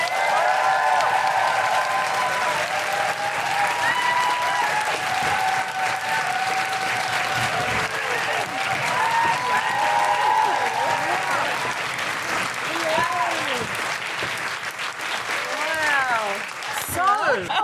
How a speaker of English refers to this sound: Put your hands together, make general woohooing and stamping noises for Andi, Osho!